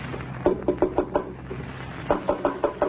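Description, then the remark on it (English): The door of Lum's home in Pine Ridge is knocked on in two quick bursts of raps, five sharp knocks, a brief pause, then another volley, clear over a faint steady hum. “There's someone at the door.”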